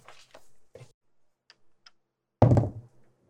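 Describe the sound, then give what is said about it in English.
Dice rolled for a dexterity check rattle and click across a table: a soft shuffle, two light ticks, then a sharp, louder clatter that quickly dies away. “Use your dice plus two for dexterity.”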